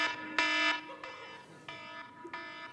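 Alarm tones sound in several short, bright bursts with small gaps between them, each a steady, ringing electronic tone. The loudest burst comes early, and no one speaks.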